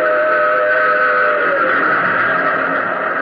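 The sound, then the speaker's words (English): A loud, sustained train whistle blares over the steady roar of a train rushing past as it plunges out of a tunnel hewn from mountain rock, filling the whole few seconds without a break. “And plunging from the tunnel's mouth, like some black, terrible monster, roared a train. Tore by me in a deafening roar.”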